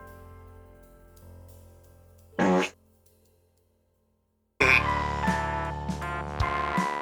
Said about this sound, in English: Uh-oh. Did you poop? Yeah. Had a nuclear fart. Had a little fallout.